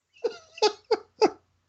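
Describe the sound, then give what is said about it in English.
A voice imitates a dolphin with four short, squeaky, chirping calls in an uneven rhythm, fairly loud, with no other talking. “… jumps and dives and catches the coin in his mouth, and then he makes dolphin noises.”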